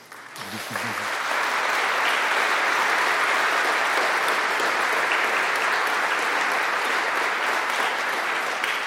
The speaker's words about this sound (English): I'd like you folks to stand up so we could give you a hand of applause. If you've been helping to prepare the folks for Confirmation Reception Day, please stand up.